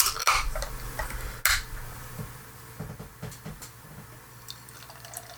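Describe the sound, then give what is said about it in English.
A metal crowler can of Breakside Bourbon Barrel Salted Caramel beer, a bourbon-barrel-aged 10.5% brew, cracks open with two sharp pops and a short burst of fizzing hiss, followed by quieter trickling and scattered dripping sounds. No one speaks. “So I'm going to crack this crowler.”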